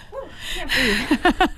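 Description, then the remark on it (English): Heavy, breathless panting from a person who has just run: a run of quick, rhythmic gasps with a voiced, almost laughing edge, growing louder and choppier toward the end, with no words spoken. “You can't breathe, but we can hear you breathing. Sorry, I'm like panting. I ran.”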